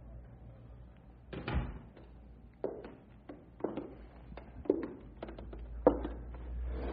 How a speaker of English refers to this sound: Close that door and come back here.